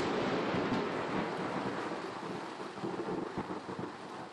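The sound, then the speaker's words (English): Steady heavy rain hisses throughout while deep thunder rumbles underneath in Portland, swelling and fading in long rolls. No voices, just the dense, continuous wash of a storm. “And the next fingerprint is from a dear family friend, Rebecca Sandberg, who sent the sound of rain and thunder in Portland, where she lives.”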